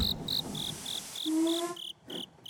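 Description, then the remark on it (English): An insect, Jerome Jr., chirps in a steady series of short, high-pitched pulses, evenly spaced and fairly loud, with a lower tonal hum sliding in briefly partway through. No one speaks. “I'm gonna crunch that stupid bug under my boot heel.”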